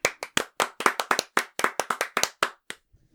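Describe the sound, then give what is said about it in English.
A single pair of hands claps about sixteen times in quick, slightly uneven succession, each clap sharp and crisp, before stopping abruptly, applauding Bobby's after tasting their food. No voices are heard. “I just would like to applaud them.”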